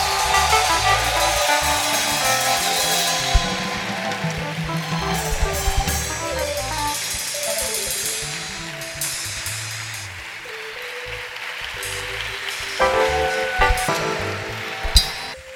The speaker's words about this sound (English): Don't stop clapping for Jesus.